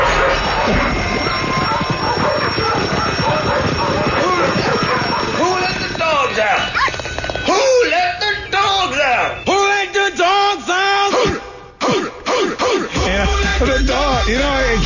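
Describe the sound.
A loud, upbeat pop chorus with a dense band and shouted group vocals, followed by rhythmic bursts of voices imitating dog barks in quick succession over the beat.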